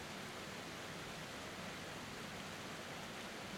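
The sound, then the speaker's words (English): A steady, unbroken rush of falling water, like a waterfall pouring continuously, with a dense hiss spread evenly throughout and no voices or other sounds. “And there is this beautiful, refreshing, inviting water cascading over this waterfall.”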